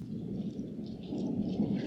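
A low, rolling rumble of thunder in a terrible storm, heard while driving home from a party, steady and moderately loud for a couple of seconds, with a faint rainy storm wash behind it and no voices.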